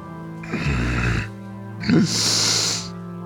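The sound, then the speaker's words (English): Snoring: one full breath cycle, a low, raspy rumbling inhale followed by a breathy, whistling exhale, fairly loud with no talking. “He's snoring.”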